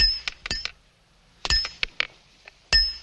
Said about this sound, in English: You're going to get used to wearing them chains after a while, Luke. But you never stop listening to them clinking.